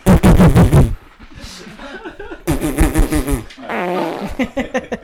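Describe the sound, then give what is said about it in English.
Loud raspberry-style mouth fart noises made by a drunk man while laughing, mixed with bursts of chuckling laughter, coming in several sputtering waves with short quieter gaps between them. “when he starts, like, doing fart noises when he laughs.”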